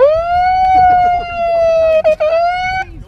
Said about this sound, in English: So here's a clip of the lads from TPM coming onto the beach with their sirens and bullhorns.